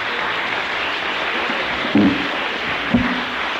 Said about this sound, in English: Come on, love. Give her a clap.